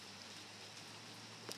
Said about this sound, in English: It's 8:52 on a Saturday. And we get the sounds of rain. I like it. Rain is good. We need rain. God, it's been forever since it rained.